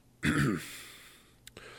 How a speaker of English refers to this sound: He began with a slight grumble to clear his throat.